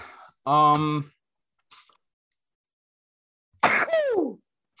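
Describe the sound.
A short voiced gasp, then a few seconds later a loud sneeze with a sharp burst that trails off into a falling vocal tone.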